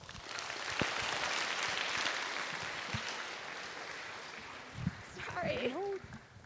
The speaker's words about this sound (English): Another round of applause for all three speakers. It takes a lot of courage to come up here and speak like that, and they really didn't have help with their speeches.